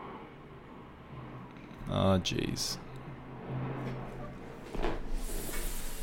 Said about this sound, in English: There's that plane I was hoping wouldn't come.